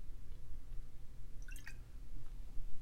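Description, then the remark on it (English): A quick sip of water: a short wet slurp and swallow lasting under a second, set against a low background hum and no talking. “Yeah, I really don't edit these and I have to have a drink of water.”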